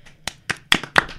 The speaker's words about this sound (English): Yep. Round of applause.